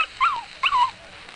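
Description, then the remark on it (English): Two short, high-pitched whiny yips from pups, each sliding downward in pitch, fairly loud with a brief pause between them, followed by quiet. “Quiet, you pups, quiet.”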